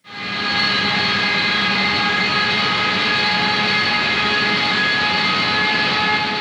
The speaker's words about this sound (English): TIE fighter cockpit.